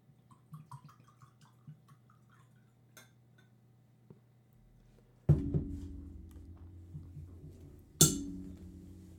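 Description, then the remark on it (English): Soft glassy clinks tap lightly at first, then a steady stream of drink from an uncorked bottle pours into a cup full of ice, ending with a sharp clink and splash. No one speaks. “So I am going to pour some of this for this episode.”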